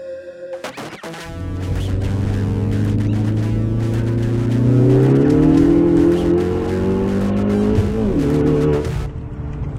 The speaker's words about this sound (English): Those car sounds were sent in